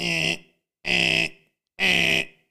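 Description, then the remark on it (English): A mobile phone alarm tone: three loud, harsh electronic beeps of equal length, evenly spaced with short silent gaps, buzzy, with no voices. “Who designed the alarm sound on mobile phones?”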